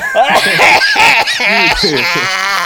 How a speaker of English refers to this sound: That was a grotesque cough! Even for me, I was just joking around.